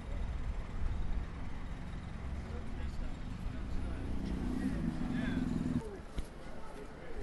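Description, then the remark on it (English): Police trucks rumble past on a street, driving alongside a march on the pavement, a steady low engine drone that swells into a heavier growl midway before easing off, with indistinct voices faintly in the background. “Yeah, there's no noise here, but we're walking along, and the sort of march is actually coming back the opposite direction now on the pavement with police trucks driving along beside them.”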